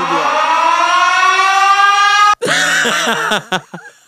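A loud alarm siren sound effect: a harsh, buzzy wail slowly climbing in pitch for about two seconds, then a brief cut and a burst of warbling, wavering tones that fade out.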